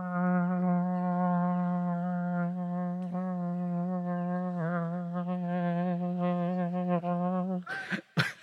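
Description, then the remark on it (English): A voice imitates a ram's horn shofar with one long, steady, buzzy low drone that wavers slightly toward the end, followed by a short breathy burst. “the groom and his groomsmen would bust out their shofars, right? They'd come into her town, unannounced, bust out some ram's horns, which kind of sound like...”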